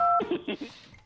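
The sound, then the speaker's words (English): A short two-tone telephone keypad beep sounds at the start as someone dials a phone call, then a voice briefly speaks over quieter background noise. “Well, I'll call her right now”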